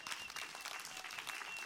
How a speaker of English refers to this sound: Amen. Hallelujah. So applaud the Lord for that.